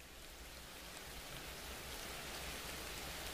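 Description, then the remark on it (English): Steady rain falls continuously at night in Crescent Hill Cemetery, a dense, even hiss of drops pattering on surfaces with no pauses, moderately loud, with no voices present. “Here, under the watchful eye of the moon, Killian remains, a solitary figure enveloped in a shroud of memories and rain.”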